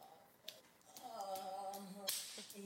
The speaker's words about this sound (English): The best is the slap on the ass at the end. I still haven't heard the slap on the ass.